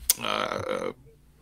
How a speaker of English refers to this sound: But I hear a dog snoring in the background. Is that my earphone or is that your dog going? No. That's Julius. He snores.